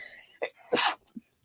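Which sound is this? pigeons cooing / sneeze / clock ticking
sneeze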